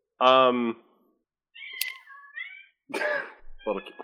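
A string of clear cat meows: a loud, drawn-out first call, then several shorter rising and falling mews in quick succession, with brief quiet gaps between them.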